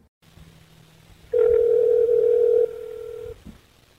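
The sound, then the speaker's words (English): A steady telephone dial tone hums for about two seconds, loud, dropping slightly in volume before cutting off, followed by a brief click over a faint background hum, as a call is placed to the medical examiner's office in Richmond. “But when that didn't turn up any new information, we called the medical examiner's office in Richmond to see if information about blood type would be included in the autopsy report.”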